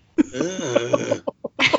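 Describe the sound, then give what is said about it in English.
Someone gags with a strained, wavering, voiced retch lasting about a second, followed by a few short, sharp throat-clearing bursts. “Well, because if I didn't have, oh, I'm like gagging now.”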